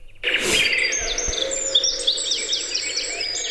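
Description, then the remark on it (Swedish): Lively summer birdsong with a blackbird's fluting phrases among many overlapping chirps and tweets, a steady chorus filling the air with no voices. “Kastar du på koltrast, sommarljud, bara bin, whatever you can find, och så att vi bara får känna sommaren tillsammans.”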